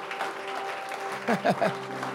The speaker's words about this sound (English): If you have hands and you want to clap, clap for Jesus.